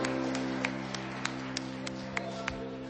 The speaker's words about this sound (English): So let's give her a high desert love appreciation round of applause for everything she does for us. We love you.